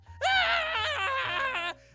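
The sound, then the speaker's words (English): A person imitates the character Jimmy screaming as Jehkovah goes down in combat: one long, loud, piercing, annoying scream lasting about a second and a half, its pitch wobbling toward the end before it cuts off abruptly. “And then Jehkovah goes down, and Jimmy just screams.”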